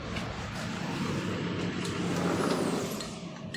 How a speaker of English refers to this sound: I've left my patio door open, and I may have to let me close it right now. I see a big delivery truck, a mattress delivery truck, pulling up.